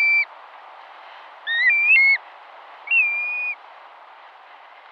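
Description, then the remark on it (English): A black-bellied plover gives three clear, plaintive whistled calls, each slurred and drawn out, spaced a second or so apart over a steady wash of background noise, with no talking. “Here's one shorebird that breeds in the Arctic, the black-bellied plover.”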